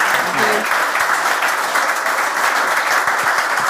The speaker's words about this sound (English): Can you give a round of applause, please? I think they were great. Tony Scullion and Enda Gormley, everyone. Thank you.